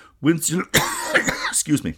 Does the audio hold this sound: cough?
yes